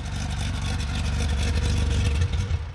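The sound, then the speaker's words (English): A genuine G-Series Porsche 911 Safari rally car with a flat-six engine passes, its engine rumbling loudly in a steady throaty roar with a deep low growl that swells slightly before easing off at the very end. “Here comes that Safari 911. Oh, that sounds good. That is a genuine G-Series Safari rally car.”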